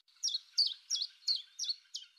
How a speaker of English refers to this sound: Newborn lambs are not the only sign that spring is here. For James Common, it's the chiff-chaff.